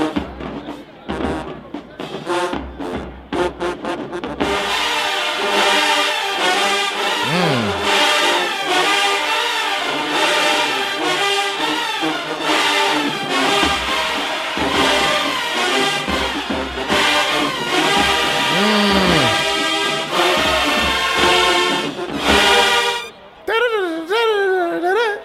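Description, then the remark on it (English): A marching band's tubas and brass blare loudly and continuously, stacking rich sustained tones with sliding pitch swells, after a few choppy opening hits; the dense wall of sound barely lets up. “That circular breathing you got to do to play that, bro.”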